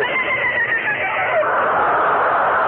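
A long, wavering horse whinny rises and falls in pitch with a sing-song quality, loud and close, sustained for a few seconds with no talking over it.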